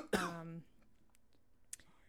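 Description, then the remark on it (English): A single harsh cough bursts out near the start with a raspy, voiced edge, then fades into near silence broken only by a faint click. “So there are gonna be coughs and heavy breathing, and I guess I messed up on New Year's night.”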